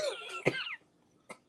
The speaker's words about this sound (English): Cue coughs. as I cough to myself, a self assault. That was through the microphone, man.